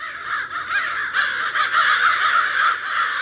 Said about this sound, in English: One crow is just a crow. Two make a pair. Three might be a crowd, but a group of crows is called a murder.